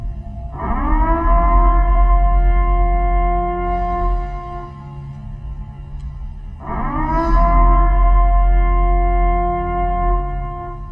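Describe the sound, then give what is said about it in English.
The alarm from the film The Purge: a loud civil defense siren sounds twice, each blast swelling up quickly into a long, steady, droning wail with rich harmonics over a deep rumble. No one speaks. “Like, I'm sure people have heard of like the alarms that people have.”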